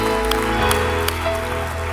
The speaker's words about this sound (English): Come on, let's give these a round of applause.